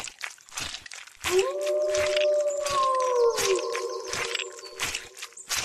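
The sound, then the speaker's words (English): A person lets out a long, sustained wolf-like howl, a single wavering note that slowly slides downward and lasts about four seconds, loud, with scattered noises in the background. “So that's what I'm going to do. Okay. Run and howl.”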